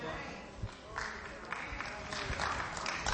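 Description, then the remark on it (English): An audience applauding, a dense wash of clapping that swells in waves across the few seconds, with some voices mixed in. “Go ahead and clap. Clap real good.”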